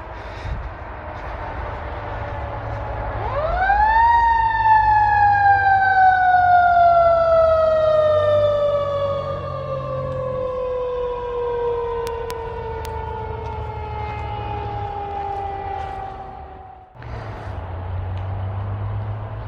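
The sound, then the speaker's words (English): A loud emergency siren swells up, then holds one long wailing tone that slowly sinks in pitch as it passes, over a low traffic rumble, before cutting off abruptly. “I'm just gonna hold on for a sec while this siren goes by.”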